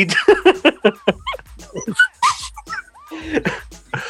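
A dog whimpers and yips in quick, high-pitched bursts, with a few short barks mixed in, moderately loud, continuing in an uneven rhythm for several seconds.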